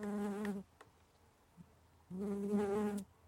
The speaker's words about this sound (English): I just held my mic up to a tiny bumblebee. It might not be that nice to listen to, so apologies if you have a fear of buzzing insects.